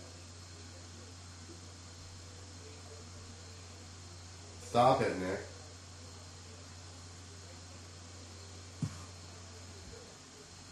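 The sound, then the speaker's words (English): A steady electrical static hiss and hum coming out of speakers runs through the whole line, constant and fairly low, with a short burst of speech partway through and a single faint click near the end. “Where's that static coming from?”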